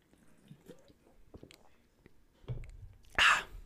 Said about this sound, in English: I'm going to sip from my beverage.